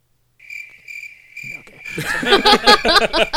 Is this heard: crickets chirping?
yes